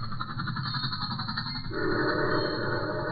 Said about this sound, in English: There goes the two train.